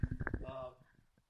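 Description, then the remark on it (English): A single sneeze: a few quick, breathy low bursts lead into a short voiced, tonal blast, and the sound then fades away into quiet. “bless you.”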